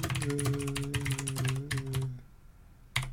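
Rapid, crisp keystrokes clatter on a new computer keyboard for about two seconds over a low steady hum, then stop briefly before a final short burst of clicks.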